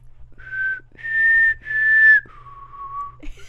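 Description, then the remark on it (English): A person whistles a short four-note tune, clear, with each pure note held steadily and the last one dropping lower, over a faint low background hum. “I was, and I was so scared that my whistle wasn't going to be right.”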